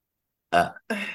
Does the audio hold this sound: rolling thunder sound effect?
no